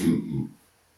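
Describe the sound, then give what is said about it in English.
A man clears his throat with a single short, low, guttural cough, fairly loud, lasting about half a second before it falls to near silence. “This man burping, coughing.”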